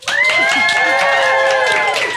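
A live show audience bursts into steady applause mixed with loud cheering and whoops, welcoming a guest onto the show, sustained for a couple of seconds, with no one speaking over it.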